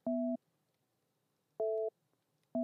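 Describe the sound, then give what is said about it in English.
A telephone busy signal sounds alone after the other party hung up the call: steady two-pitch electronic beeps repeating at even intervals with short silent gaps, clear, the last beep cut off. “So, dude, listen, next time I'm the one who hangs up the phone, not you.”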